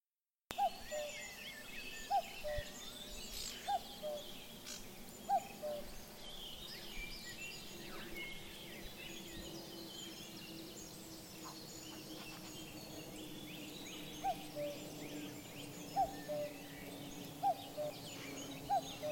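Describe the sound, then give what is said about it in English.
Loud, explosive bursts of Cetti's warbler song ring out against a busy chorus of other birds, with a steady background hum and a regular, repeated chipping note running through. “Chetty's warbler.”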